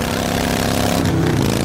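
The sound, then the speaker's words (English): A motorcycle engine runs loud, a steady low rumble with a slight rise in pitch toward the end, filling the whole moment with no voices audible. “And this is what that same commercial sounds like on your motorcycle.”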